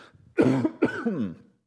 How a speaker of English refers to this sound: Excuse me. Still have this remaining COVID cough thing going on.